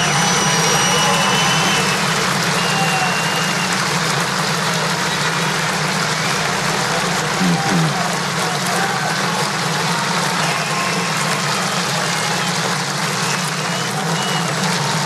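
A large outdoor golf gallery gives a long, sustained ovation as Tiger Woods crosses the bridge and comes to the 18th green at St. Andrews. It is a loud, steady roar of clapping and cheering that holds without a break for about fifteen seconds, with no one speaking over it.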